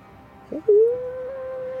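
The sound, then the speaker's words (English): A loud, drawn-out howl rises after a short yelp, then holds a steady mournful pitch for over a second, clear with no talking. “And it's that moment you hear a loud howl.”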